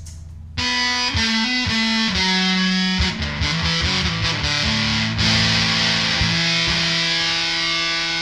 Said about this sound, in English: So that's the Big Muff side, obviously. And there's some kind of switch that gives him like a... either like a high tone cut or like a treble boost or something like that. It's some kind of boost.